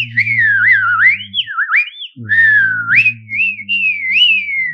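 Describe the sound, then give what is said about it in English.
A person whistles a warbling melody mimicking birds, with quick upward chirps and slides, while vibrating their vocal cords at the same time to make a low droning rumble underneath that drops out briefly midway, fairly loud. “So I learned to whistle very young, and I would mimic the birds.”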